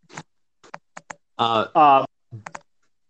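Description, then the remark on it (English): A few sharp, scattered keystrokes tap on a computer keyboard, with a short stretch of voiced speech breaking in between the clicks. “Is someone's typing too obnoxious?”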